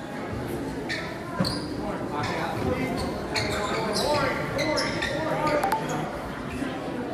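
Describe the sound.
A basketball, slapped out of bounds during a game, bounces repeatedly down a hallway with sharp, echoing thuds, its rhythm slightly uneven, set against a steady wash of background murmur and indistinct voices.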